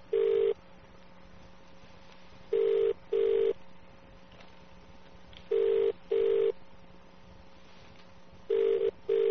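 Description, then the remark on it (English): A telephone ringback tone in the British double-ring pattern: pairs of short tonal bursts repeating about every three seconds, with a steady low hum in the background and no voices. “It's kind of mesmerizing to just listen to a phone ringing, you know? Yeah, like these British ones, they're kind of calming, aren't they?”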